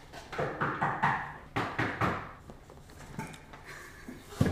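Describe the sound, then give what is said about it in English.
Knocking on wood for good luck on the wooden floor of an apartment: a quick flurry of knuckle knocks, irregular and fairly loud, trailing into sparser quieter taps before one sharper final knock. No voices. “We're back. We've knocked.”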